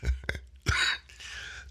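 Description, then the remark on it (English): A fairly loud cough from a tickle in the throat: a couple of quick throaty bursts followed by a longer, harsh rasping cough that trails off, with no talking. “I'm sorry, that wasn't a cough to show you that I've got a situation in my chest and throat. That was a tickle.”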